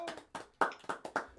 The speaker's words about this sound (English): Woo! Round of applause.